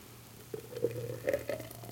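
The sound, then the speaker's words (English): Thick, freshly blended tequila drinks glug and splash in short wet bursts as they are poured into glasses over a steady low hum, with a few brighter gurgling spurts toward the end. “Let's see if I can pour these without spilling them all over the place.”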